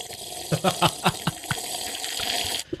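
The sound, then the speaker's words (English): Water sipped through a gap in the teeth: a few quick, wet slurping pulses, then a steady hissing rush of liquid, fairly loud, with no talking. “But baby, you get a good sip because then that water goes right through that gap right there, so you get that extra flow, girl.”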